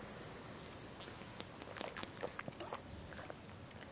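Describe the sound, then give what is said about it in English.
Quiet sipping and swallowing of water, a run of small wet clicks and gulps clustered in the middle, heard alone without any talking. “everything that's brought me to this moment, speaking here now, drinking this sip of water.”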